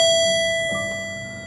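An elevator arrival chime rings out, a clear, sustained electronic tone with a second higher note joining partway through, both slowly fading with no voices present.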